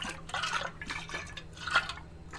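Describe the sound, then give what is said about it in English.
Water sloshes inside a water bottle shaken back and forth in several quick, splashy bursts with a slightly hollow, echoey quality, moderately quiet, with no voices. “Shaking the water around.”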